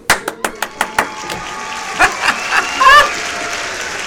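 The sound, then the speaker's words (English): Audience clapping: a quick run of sharp, evenly spaced claps that slows into a few scattered ones, with a brief, high wavering whoop near the end before the sound fades. “Let's stop let's clapping.”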